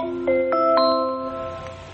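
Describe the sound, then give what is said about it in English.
An Alexa Connect smart speaker's incoming-call ring as a cell phone calls the home line: three quick, bright chime notes stepping upward, then a sustained tone that slowly fades. No one talks over it. “Should be ringing here in a second.”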